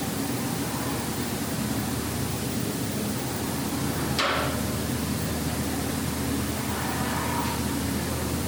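A steady, even wash of car traffic noise with a low rumbling hum underneath, broken once midway by a brief sharp knock. No one speaks.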